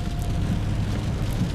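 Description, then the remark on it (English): A steady, even wash of light rain falling, with a low rumble underneath and no distinct drops standing out, continuous throughout with no voices. “Looks like the rain is lightening up just a little bit, a couple miles from the abode.”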